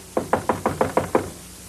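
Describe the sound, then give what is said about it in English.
Seven firm, evenly spaced knocks in quick succession on the door of a wig maker named Dent, who does not answer, as police call for him; clear, with no voices around them. “So Janik and Swoozie, they go to visit the wig maker to find out if he has any further information on this mysterious Giselle. He doesn't answer the door, so this occurs.”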